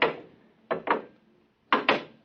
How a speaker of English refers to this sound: The door's closed behind us. Try the lock. No, it's no use. Here, let me try. Oh, holy smoke, I can't get it open.